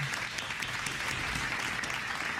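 A burst of applause from a small group, a dense patter of many hands clapping at a steady, fairly loud level throughout, with no voices.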